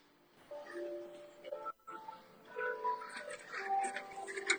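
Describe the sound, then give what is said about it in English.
A bell that goes off every hour rings out with sustained, ringing tones layered over a low background murmur, pausing briefly before sounding again and building toward the end. “Hold on, I'll wait for the bell to stop in the background. That damn bell goes off every hour, man.”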